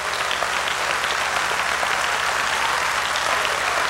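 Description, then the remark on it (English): A large crowd claps steadily to worship the Lord, a dense and continuous wash of many hands applauding together with no voices standing out. “Clap again and worship the Lord.”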